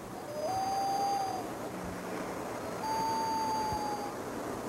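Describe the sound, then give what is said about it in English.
A passing emergency vehicle's siren sounds two long, steady wailing tones, each rising slightly in pitch, separated by a short gap over a constant wash of background noise. “Oh, some emergency. People love the sea. Emergency vehicle coming by.”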